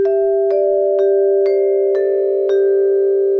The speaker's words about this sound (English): So I want to tell everybody the beautiful sounds that doorbells can make, like this one.